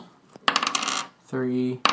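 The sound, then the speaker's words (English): A pair of six-sided dice clatter and rattle across a hard surface in a quick burst, followed by a brief steady ringing tone and one last sharp click. “Yeah, I look in the sack of coins. Roll 2d6.”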